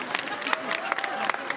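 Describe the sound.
A small audience claps in sparse, uneven bursts of sharp, bright hand-claps, with a faint murmur of voices running underneath.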